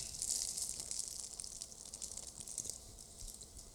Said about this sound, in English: Got a little bit of drippy drip. 2021 birthday bourbon poured over the frosted fudge cake.